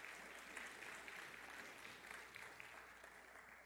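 A crowd claps steadily in a dense, continuous burst of applause that holds at an even level for several seconds, with no voices rising above it.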